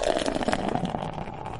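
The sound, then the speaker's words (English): Beer pours steadily into an old-school Eagles glass, a continuous gurgling splash with a hollow, bubbling tone that holds at an even level for over a second, with no talking. “There's the pour, ladies and gentlemen, as it's going down the hatch, about to be, I should say.”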